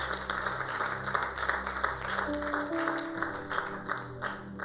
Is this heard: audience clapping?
yes